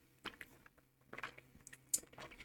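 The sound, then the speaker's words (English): Someone takes quick sips from a water bottle, quiet, with soft wet mouth clicks and a few small gulps in an uneven rhythm and no talking. “Got my water bottle here. Take a quick sip.”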